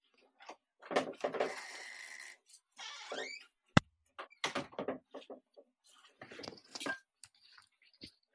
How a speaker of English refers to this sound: My goddamn dog. As soon as there's a closed door in the house, the dogs are like, hey, let's go through that 60 times.